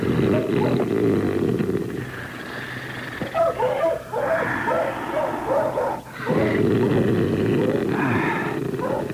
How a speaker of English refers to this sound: you barking in your sleep?